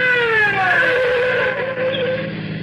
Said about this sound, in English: The patrol car let me roll ahead and swung in behind us and we came to a stop.